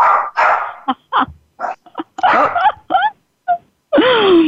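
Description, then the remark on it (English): A dog named Louie gives a run of short, high, uneven barks and yelps mixed with whimpering, then ends on a longer whining cry that slides downward in pitch. “So that's Louie. Some of our listeners are familiar with Louie. And when he barks, we tend to say a woman's making a womb connection.”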